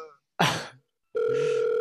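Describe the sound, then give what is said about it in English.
A short noisy burst, then a steady telephone dial tone of an outgoing call starts and holds unbroken to the end, loud, with no talking. “Well, the thing is, with that sweet, sexy sound drop, he better answer the phone today.”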